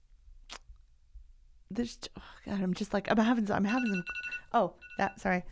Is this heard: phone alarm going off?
yes